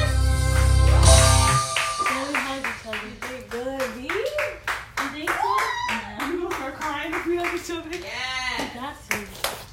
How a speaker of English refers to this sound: And this last clip is the ending of the song where you can hear my mom cheering us on and hyping us up at the end. It was really cute, guys, so take a listen.